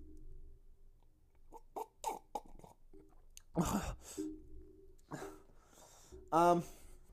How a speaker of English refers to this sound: Let me just fucking sip my drink.